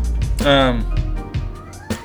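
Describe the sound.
A single drawn-out meow from the speaker's pet cat rises clearly over a man's ongoing speech, bright and tonal with a slight falling pitch, lasting under half a second.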